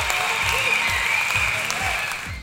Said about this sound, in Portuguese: eu vou ser obrigado a separar mais uma vez, pedir pra você separar palmas. Tá aqui prontinho já. Porque o … venceu mais uma. Palmas para o ….